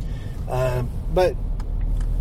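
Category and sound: vehicle, car interior road noise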